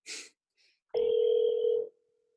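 A phone call to a business location in Hattiesburg rings out over a speakerphone: one steady, electronic ringback tone lasting about a second, preceded by a brief rustle of noise, with no one talking.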